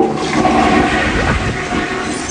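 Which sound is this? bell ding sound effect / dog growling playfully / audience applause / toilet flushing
toilet flushing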